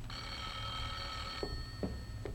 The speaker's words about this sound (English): For your information, there's the phone. Excuse me a minute.